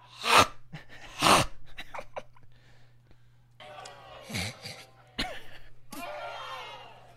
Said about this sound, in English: People are just utterly gasping. They're not like, yes, preach on it. Amen. Like, ah.